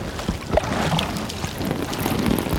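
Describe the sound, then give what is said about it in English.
A man urinates in a boat, a steady splashing stream running for a few seconds over hissing wind and lapping water, continuous without any talking. “I gotta take a piss.”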